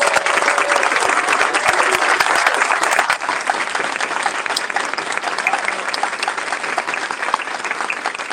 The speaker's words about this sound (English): But before you do that, could we all please give your parents, if they could stand, let's give them a round of applause.